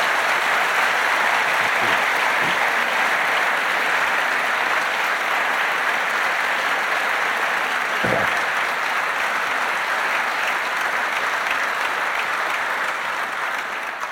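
Sustained audience applause for the musicians and singers of a band on the last night of the 2019 Bangor Worldwide Missionary Convention, a dense, steady wash of many hands clapping at a constant loud level with no voices on top, tapering only slightly at the very end.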